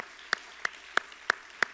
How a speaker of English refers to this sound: Come on, everybody, put your hands together and clap to the Lord.